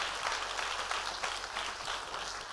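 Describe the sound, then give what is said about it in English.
An audience claps their hands together, a dense, steady wash of many overlapping claps that holds at an even loudness throughout, with no voices standing out. “Clap your hands, people.”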